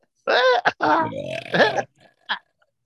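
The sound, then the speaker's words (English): A long, loud, voiced burp made while talking, stretched out like a drawn-out word, with rising and falling pitch, followed by a short breathy sound at the end. “It's when you burp and talk at the same time.”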